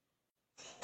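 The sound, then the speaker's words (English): A single sneeze: a quick, breathy intake of air after a moment of silence, ending in a sudden loud burst. No one speaks. “Bless you.”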